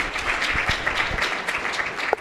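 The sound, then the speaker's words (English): An audience claps steadily for a couple of seconds to welcome a speaker introduced to talk about refugee health: a dense, even patter of many hands at a fairly loud level with no voices over it. “You can applause again.”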